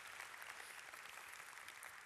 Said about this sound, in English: Isn't it pretty amazing? Come on, let's give God a huge clap offering.